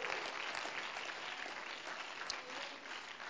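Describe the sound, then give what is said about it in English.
An audience claps their hands to the Lord in a steady, dense wash of applause that stays at an even, moderate loudness throughout, with no voices standing out. “Oh, why don't we clap our hands to the Lord again right now.”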